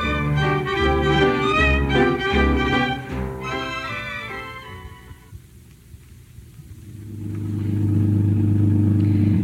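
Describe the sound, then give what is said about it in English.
A car engine revs loudly and rumbles, drops briefly to a near lull, then builds again into a steady low drone as the vehicle pulls away. No one speaks. “It took me a few days, but I finally got you in my car.”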